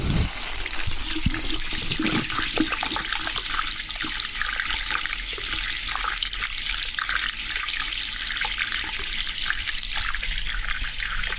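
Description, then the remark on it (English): A steady stream of warm water pours from a tap into a basin while hair is being washed, a continuous hiss and splash that holds at an even level throughout, with no voices. “Pop your head back into the basin and just feel the water on your scalp.”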